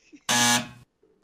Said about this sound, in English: Ring the bell for Skype. Woo! No, don't ring the bell.